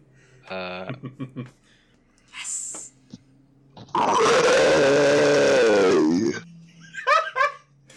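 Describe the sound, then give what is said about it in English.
A person lets out a long, loud, strained roar, imitating a character's dramatic-entrance roar that is really a 're', held for about two seconds at full force, with brief giggles and laughter before and after it. “She makes a dramatic entrance and does a big roar, but it's really a re.”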